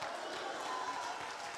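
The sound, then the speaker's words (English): An audience claps its hands in a steady, dense wash of applause that holds level throughout, with a murmur of crowd voices blended underneath. “I wish everybody would jump to your feet and clap your hands and shout hallelujah.”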